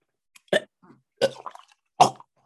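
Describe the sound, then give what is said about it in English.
A person gags and retches three times in quick succession after sipping apple cider vinegar, harsh throaty heaves with brief gasping pauses between them and no speech. “Man, my body, a gag reflex kicked in.”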